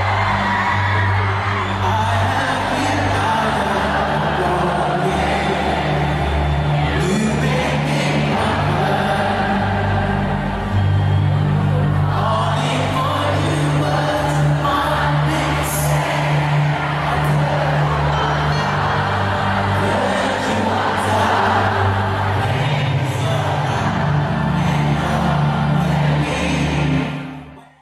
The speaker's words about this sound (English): Then to flex, he sang a duet with 80,000 fans last night.